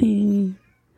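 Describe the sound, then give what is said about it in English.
A male cat lets out one drawn-out, fairly low meow, lasting about half a second before fading into near silence. “Oh, and the cat has something to say about it.”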